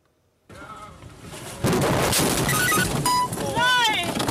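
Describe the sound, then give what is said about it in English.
Strong storm wind roars, then a sudden heavy crash as part of a roof blown off by the storm slams down onto a car on a road in Cologne, Germany, loud, followed by sustained rumbling noise and startled human cries and voices. “Another part of the same roof crashes right down on top of them, nearly crushing their car.”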